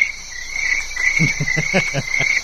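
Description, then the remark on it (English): A crickets sound effect: a steady, shrill chorus of crickets trills continuously, joined midway by a quick series of low, throaty pulses like frogs croaking. No one speaks. “I said, crickets is every time you play, you tell a horrible joke, I'm going to play those crickets.”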